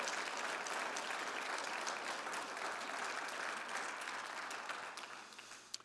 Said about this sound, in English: Brothers and sisters, give them a round of applause if you would.